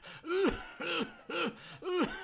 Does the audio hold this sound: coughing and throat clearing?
yes